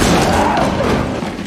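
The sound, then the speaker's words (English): A loud, heavy crash in a movie scene as a man picks up a chair and throws it into another man, knocking him down, a dull thud buried in dense, rumbling noise that stays strong through the whole moment. “And it's him just throwing a chair at him.”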